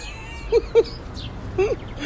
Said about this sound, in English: Oh, these little birds are here. They're fighting. Can y'all hear them? They're so sweet. Oh, they're not fighting. Never mind.